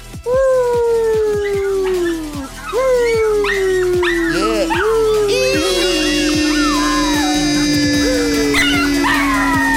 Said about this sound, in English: Ziggs, you ready? You ready, buddy? Should I pull up the thing? I wish we could get him to do it without even prompt. Yeah, train your fucking dog. Train your fucking dog. If I start howling, he'll do it. Well, then do it. All right, Zig, ready?